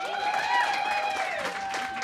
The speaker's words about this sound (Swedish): En applåd!